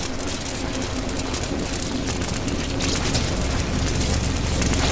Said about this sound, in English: Best soundbite, I'm going with the crackling electricity from the Tesla machine. That's my runner-up.